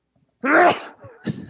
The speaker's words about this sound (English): Oh, that's a classic. Yeah. That's a man sneeze right there.